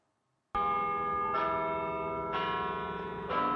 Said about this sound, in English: Yeah, hopefully I had enough time to, you know, to time it so that the, you know, the bells could actually play and everything.